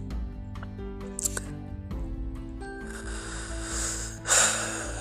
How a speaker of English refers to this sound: I'm breathing heavy because I'm thinking and I'm realizing all the things that I have done and yet to do.